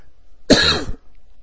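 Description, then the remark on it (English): A single loud cough, from someone who has picked up a cough as winter comes in, bursts out for about half a second, harsh and breathy, then quiet follows with only faint background hiss. “This is what happens when winter comes in. You start to pick up a cough.”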